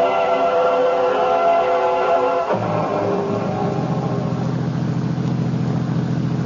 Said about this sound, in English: I was still fuming, even after the limousine the Stokeleys had sent to pick me up at Dulles Airport was purring along the road west toward Winchester.